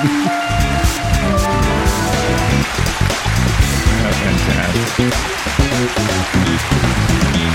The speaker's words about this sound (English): Is that the sound of rain falling? Or? That's applause, Dan. Oh, that's applause.